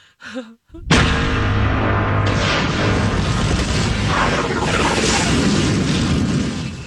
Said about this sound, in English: is that a vulture droid exploding, the Death Star exploding, an asteroid storm, or a seismic charge detonating? Seismic charge. D. Seismic charge detonating.